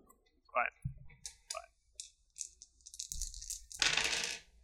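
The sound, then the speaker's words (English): A large handful of dice, rolled for the damage of a trident attack, clatter and tumble across a hard surface, scattered sharp clicks building into a dense rattling burst near the end, with faint murmuring voices in the background. “That was an awful lot of dice.”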